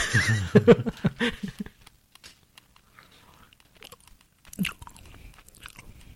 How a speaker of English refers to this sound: You're just going to listen to me chew.